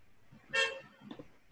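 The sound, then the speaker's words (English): A single short car horn toot sounds clearly, followed by a few dull thumps of traffic noise in the background. “Like, once I press, like, once I hit three, like, my car, there's a car that just punched.”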